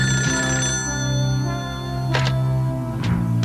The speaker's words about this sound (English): So we fade back to the Tracker Mansion. We hear the phone ring.